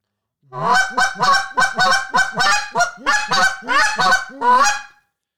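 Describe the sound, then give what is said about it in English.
A goose call blows a quick, rhythmic run of sharp clucks and paired double clucks, about ten honking notes, loud with no talking. “If I had something that I see myself doing a lot, it's a cluck, double cluck sequence, and here's what it sounds like.”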